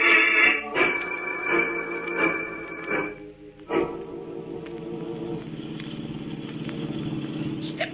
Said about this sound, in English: I'm giving her all she got. This jalopy ain't got wings, you know.